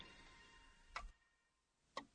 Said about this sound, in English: The grandfather clock is ticking too loudly again.